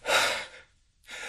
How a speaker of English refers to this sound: Oh, God, sneezing isn't normal. I never sneeze.